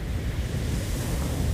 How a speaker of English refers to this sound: just listening to the sea, looking up at the sky.